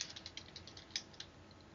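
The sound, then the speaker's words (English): Quick, irregular run of light clicking keystrokes from someone typing on a keyboard, about a dozen soft taps with a couple of slightly sharper ones, fairly quiet with no talking. “And typing. Sorry, that was me. I was typing that...”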